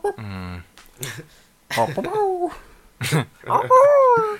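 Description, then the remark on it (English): People imitate dog whimpers, a series of short, high, whiny yelps with sliding pitch, coming in several separate bursts over a few seconds. “Let's all make little doggy noises.”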